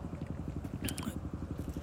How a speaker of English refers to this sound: Sorry, you hear that motorcycle.